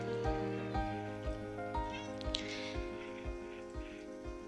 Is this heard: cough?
no